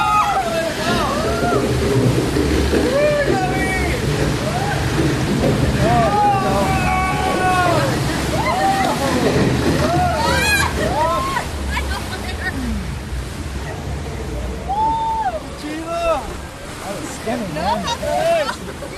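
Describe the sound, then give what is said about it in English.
Water splashes and sloshes steadily for the whole stretch, loud, on a raft ride spinning down its first drop, with wind buffeting and people's voices shouting and calling out over the noise. “Doesn't taste good, this water.”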